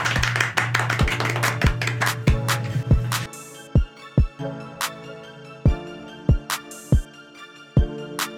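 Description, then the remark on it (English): Soft, polite golf clapping: a quicker patter of light claps at first, then thinning out into slow, sparse, uneven claps. No voices. “Golf clap, golf clap.”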